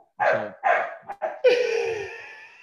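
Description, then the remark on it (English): A puppy barks at an older dog, giving several quick, high-pitched yappy barks in close succession, ending in a longer drawn-out whiny yelp, loud with no talking. “The puppy is barking at our older dog, and our older dog just ignores her.”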